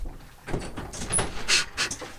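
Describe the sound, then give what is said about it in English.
A door is opened, with a short run of rattling clunks and a metallic jingle like keys over about two seconds. No one speaks. “Open the door.”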